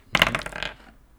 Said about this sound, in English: Oh, here, yeah, let me roll some dice.